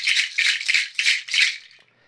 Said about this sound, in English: When I'm ready for you to recall me, I'm going to shake my rattle like this.